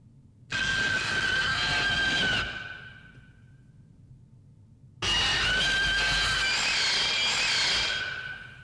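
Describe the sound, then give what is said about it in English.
A giant lobster monster roar sound effect: two long, piercing roars, each lasting a few seconds with a shrill screeching tone over a rumbling base, separated by a brief lull; loud throughout with no talking. “Now, all right, I have to warn you in the audiences that this one is a little bit piercing. This roar.”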